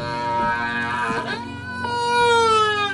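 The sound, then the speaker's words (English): Recorded whale song: a long, continuous moaning call, rich and tonal, that slides in pitch and then shifts into a second gliding wail, steady and fairly loud with no talking. “The revelation that whales create such diverse and beautiful calls proved that these giants were not just hunks of meat to kill and eat, but intelligent and complex beings.”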